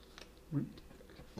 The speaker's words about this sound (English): It is a tasty pickle. I'm going to have a pickle bite for just a cleansing clean, my palate. Old palate.